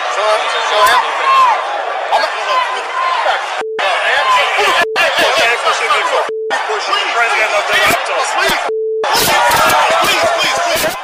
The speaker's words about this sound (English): I mean, the Raptors just won. There's a lot of cheering going on. It's kind of confusing, but you can see that it's getting heated here.